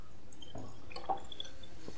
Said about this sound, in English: Let me just have some water.